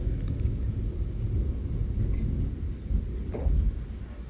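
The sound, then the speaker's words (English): A thunderstorm rumbles steadily, with deep low thunder rolling beneath a wash of rain hiss, swelling slightly near the end; no voices. “I'm going to take a sip of this coffee and let you listen to the storm just a couple of seconds.”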